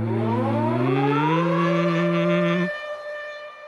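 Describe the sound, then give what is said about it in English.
A loud air-raid siren in Israel wails alone, its steady whine starting very low and sliding upward about an octave over a couple of seconds before cutting off, leaving a fading echo. “It's this whine that starts very low and then raises in an octave after, over a few seconds.”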